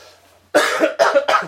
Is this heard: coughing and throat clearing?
yes